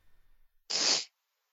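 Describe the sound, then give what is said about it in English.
One sharp, forceful sniff through the nose, a hissy, airy rush lasting under half a second, loud and alone after a faint low rumble, with no talking. “Sniffling.”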